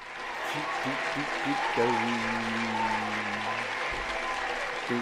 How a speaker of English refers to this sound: And thanks for the applause. I like those to boast, I guess.